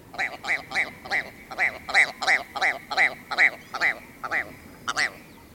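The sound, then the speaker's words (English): A ptarmigan gives a loud call of about a dozen rapid, evenly spaced croaking notes, a nasal, cackling, laugh-like series that trails off near the end. “Well, it's no wonder why the ptarmigan likes a good laugh.”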